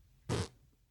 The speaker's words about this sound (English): Oops. He farts?